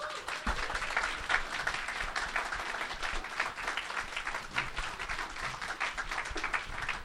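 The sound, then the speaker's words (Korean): Sustained applause from a film audience welcoming director Im Yu-cheol after a screening of his football film, a dense wash of many hands clapping steadily for several seconds with no one speaking over it. “자, 박수로 임유철 감독님을 맞이하겠습니다.”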